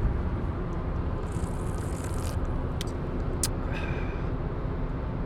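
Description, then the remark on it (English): Steady low rumble of a car driving in Tennessee, heard from inside the cabin by a relaxing passenger drinking beer, with continuous road and engine noise and a few faint clicks and squeaks near the middle. “She's taking me for a drive, and I'm relaxing in the car in a way it's hard to believe is legal.”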